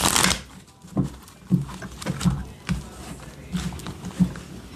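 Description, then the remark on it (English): Shuffling of a deck of tarot cards during a tarot reading: a series of soft, papery slaps and riffles arriving in a loose, uneven rhythm, with a faint voice murmuring beneath. “Let me get one more shuffle.”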